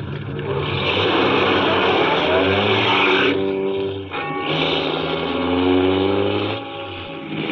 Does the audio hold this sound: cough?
no